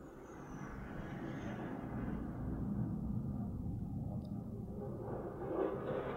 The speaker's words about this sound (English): That's a fucking jet outside. Excuse me? Wow, okay. Well, I'm sorry for that interruption, but I think some fighter jets just flew above my apartment.